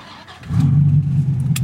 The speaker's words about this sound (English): He took me on a drive around Vancouver in his Dodge Viper GTS.